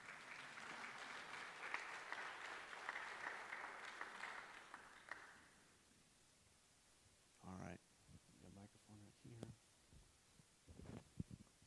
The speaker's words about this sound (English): We give her a round of applause.